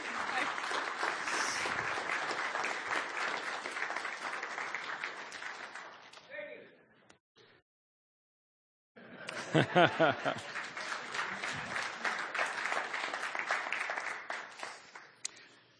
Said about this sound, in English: And we just applaud that. We applaud the mark of Jesus in your life. That's what we're celebrating.